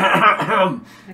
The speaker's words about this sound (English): I was just coughing. It was a weird... You might want to get that checked out.